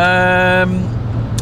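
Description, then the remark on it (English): Steady low rumble of a car cruising at speed on the E42 motorway in Belgium towards Liège, heard from inside the cabin; a brief tonal music snippet plays at the start, then cuts off, leaving the road noise. “as we make our way up the E42 towards Liège.”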